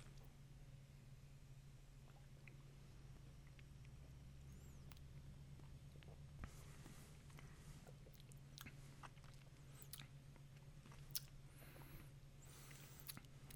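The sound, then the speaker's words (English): Quiet mouth noises from someone sipping a drink: small wet clicks and soft slurps scattered through, set against a steady low electrical hum, with no talking. “I think we might as well go ahead and take a sip. Yeah, just a sip.”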